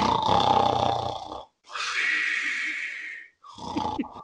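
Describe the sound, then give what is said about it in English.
A voice mimics snoring with three rasping breaths: a loud, gravelly grunting snort, then a long airy hissing inhale, then a short ragged snort. “Just snored the dog off.”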